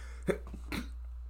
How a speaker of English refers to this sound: I can't even get rid of that sneeze from the podcast. Sorry if you don't like sneezing. I just sneezed.